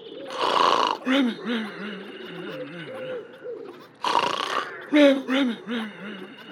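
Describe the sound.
A loud, exaggerated snore performed by a voice, heard over the phone from a farm, with two rough, rasping roars separated by wobbling, drawn-out vocal groans. It sounds comical rather than like real sleep breathing.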